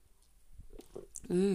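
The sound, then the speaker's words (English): Quiet sipping of coffee from a cup in the morning: a few soft slurps and mouth clicks, then a short satisfied hum or sigh from the drinker. “I'm just going to take a sip of coffee.”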